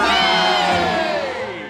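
A crowd gives three cheers, shouting "Hooray!" in a loud, sustained cheer. Many voices shout together in a bright, ringing chorus that holds steady for a couple of seconds before easing off slightly at the end.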